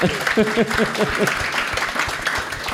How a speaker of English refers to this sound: All right. Round of applause